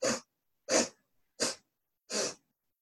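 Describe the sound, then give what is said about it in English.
Four short, sharp nasal sniffs drawn in one after another at an even, steady rhythm, fairly loud, with brief silences between them and no talking: a seated breathing exercise of inhaling through the nose in four equal parts. “And this time, what we're going to do is you're going to inhale through the nose in 4 equal parts, like sniffs, like this.”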